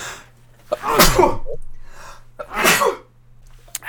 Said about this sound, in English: Sorry. Bless you.